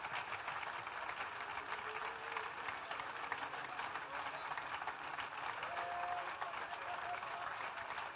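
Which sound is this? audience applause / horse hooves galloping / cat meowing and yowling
audience applause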